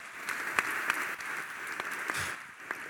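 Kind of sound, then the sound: crowd, audience applause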